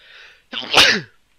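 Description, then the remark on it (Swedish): A single sneeze: a soft breathy inhale followed by a sharp, loud explosive burst that quickly fades, with no talking. “Prosit.”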